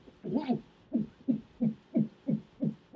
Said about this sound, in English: It's a cat throwing up.